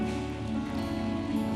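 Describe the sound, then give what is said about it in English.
An audience at Awaken Eastlake in San Diego claps for God together in a dense, steady wash of many hands, holding an even loudness throughout, while sustained musical tones hum underneath. “Let's give God a clap.”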